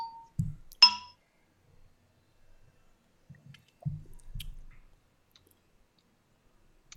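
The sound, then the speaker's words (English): A single bright clink of beer glasses tapping together in a toast near the start, followed by soft, low handling sounds and quiet sips of beer, with no one talking. “You want to take a sip? Yeah, let's give this a try.”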